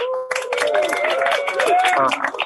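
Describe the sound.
An audience breaks into dense, steady applause lasting a couple of seconds, with cheering voices mixed into the clapping before it tapers off at the end.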